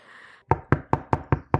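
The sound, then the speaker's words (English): Six firm knocks on a door by someone arriving, in a quick, even rhythm, loud, following a brief stretch of faint background hum. “answer the fucking door. Someone's here.”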